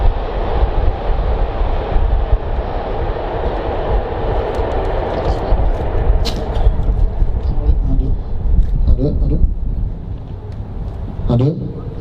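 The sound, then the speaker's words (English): A train rumbles past during an inauguration speech, a loud, continuous low roar with rattling that fills the whole stretch, with faint voices mixed underneath. “I'm not lucky with the train, huh?”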